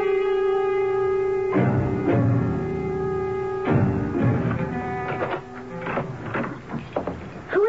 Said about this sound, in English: Oh, you gave me a start. I woke up and heard the door. I thought someone broke in.